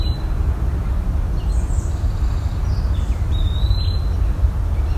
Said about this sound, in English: That's one of the pewee calls.